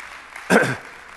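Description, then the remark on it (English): A short, loud burst of church audience clapping, given as a praise clap to God, rises abruptly, lasts only a fraction of a second and then fades quickly, with faint background hum before and after. “Give God a praise clap today, and let's get into the Word.”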